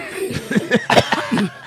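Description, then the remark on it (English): A string of short, stifled coughing bursts, six or so in quick succession, each a breathy, throaty rasp, sounding like someone trying to hold the cough in, after eating bar nuts. “that cough is great too. I'm trying to hold it in.”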